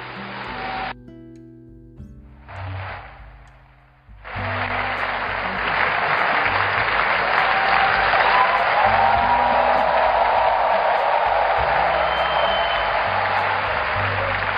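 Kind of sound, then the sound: crowd, audience applauding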